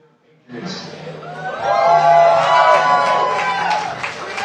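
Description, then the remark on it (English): A live crowd erupts into loud cheering and whooping, rising after a brief quiet start and sustaining as a dense, excited roar of many voices with high whoops riding on top. “Good morning, and good morning to the great crowd there at Patriots.”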